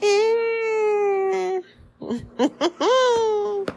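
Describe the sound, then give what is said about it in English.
A toddler whines and fusses: a long, drawn-out, high-pitched wail, a few short choppy fussing sounds, then another sustained whiny cry. “His new thing is, if I don't give him exactly what he wants, he goes, I'm so sad.”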